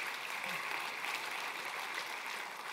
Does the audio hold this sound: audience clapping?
yes